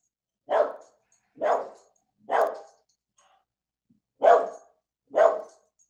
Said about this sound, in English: Bark if you want to be like that dog.